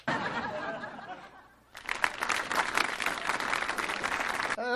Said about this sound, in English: So Frasier has just given the address at the school, and all the students are clapping, and they're having a great time.